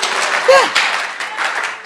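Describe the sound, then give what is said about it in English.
A crowd claps steadily, a dense wash of applause with a brief shout rising through it near the start. “You are not clapping. You should clap.”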